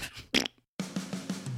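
A brief sputter is followed by a short pause, then a longer buzzing, flapping fart that rattles on for about a second, close up and fairly loud, with no talking.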